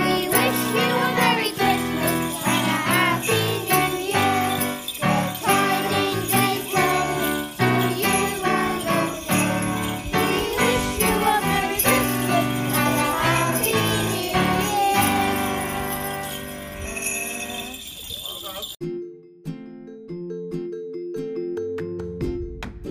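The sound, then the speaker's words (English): Bright jingling bells shimmer over a loud, busy musical backing for a Christmas carol for about nineteen seconds, then the sound drops away to a few soft, sustained tones. “Wait, can we do the jingle bells again?”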